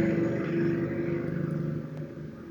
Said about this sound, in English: That was a nice motorcycle you had go by there.